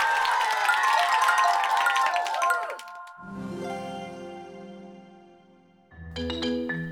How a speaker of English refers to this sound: Give yourself a huge round of applause. Great job with Wheels on the Bus, everybody.